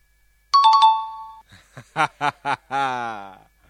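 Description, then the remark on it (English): A bright quiz celebration chime sound effect rings out in four rapid strikes, its tones sustaining briefly, followed by several short chuckling bursts and a longer drawn-out laugh. “Wow, that is the worst celebration noise ever.”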